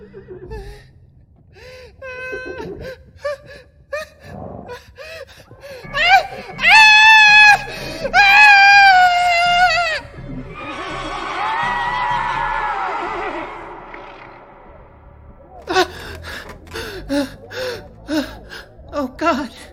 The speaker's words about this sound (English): Oh God! Stop the screaming! Guys, like, remember, other people live in my apartment building, okay?